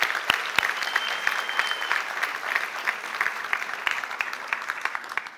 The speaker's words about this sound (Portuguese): Vamos receber eles com a salva de palmas.